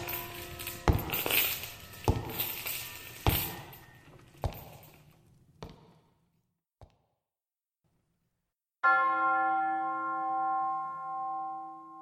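A steady series of clanging strikes fades out, then after a short silence a single loud, deep church bell toll rings out and hums on, sustaining to the end with no voices.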